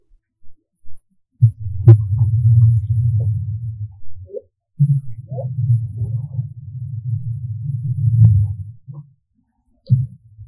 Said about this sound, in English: kept so many cruise ships and other loud vessels out of Glacier Bay, Alaska, that for the first time ever, Christine Gabriel, a wildlife biologist at Glacier Bay National Park, was able to hear a mum and baby humpback whale whispering to each other.